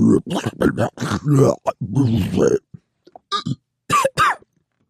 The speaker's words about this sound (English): And I realized that I've just bad indigestion and burping nonstop, which is fine, but not when I'm sitting in front of like a super sensitive microphone with sound panels around me. You can hear every little.